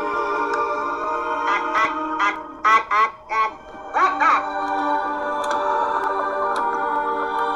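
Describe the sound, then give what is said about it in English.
Squawking, duck-like 'ack-ack' voices of the aliens from Tim Burton's film Mars Attacks chatter in quick bursts of several clipped syllables, loud, over a steady humming, droning background. “And then so, like, the Ak-Ak, that's how the aliens talk.”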